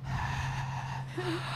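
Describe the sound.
A voice imitates heavy, muffled breathing through a face mask during a class, a single drawn-out rasping breath held steady and loud for over a second, with no words spoken.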